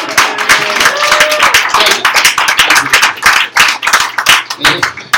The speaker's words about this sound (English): You've been watching my anxiety for the last 3 months, but we fucking did it. So goddamn. Let's just give a round of applause. For you.